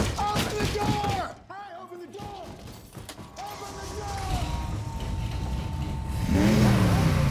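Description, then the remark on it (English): A powerful race car engine revs and roars as Carroll Shelby gives Mr. Ford an impromptu ride in his expensive race car, its pitch sweeping up and down, climbing to a loud roar at the end, with voices and mechanical clatter mixed in. “Shelby and his team are building the car, to kind of do a power play, and Carroll Shelby surprises them and gives Mr. Ford an impromptu ride in his very expensive race car and kind of gives him the ride of his life.”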